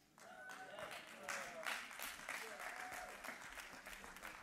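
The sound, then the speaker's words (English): An audience claps steadily for several seconds, a dense patter of many hands, with a few voices calling out faintly beneath the applause. “Why are they clapping?”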